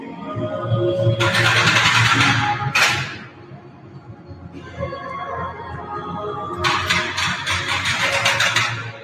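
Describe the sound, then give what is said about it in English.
Weights on a platform, equipment like that on Ninja Warrior, are pulled down, clattering and rattling like a roller coaster on its track in two loud, harsh bursts over a steady low mechanical rumble, with no talking. “They put weights on that platform right there, and then you just pull the weights down.”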